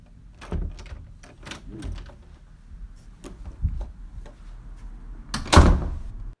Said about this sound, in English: Insert door opening sound effect.